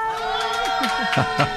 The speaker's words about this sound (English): And they're all here, and it's kind of hard to hear on the phone when we're all yelling like that.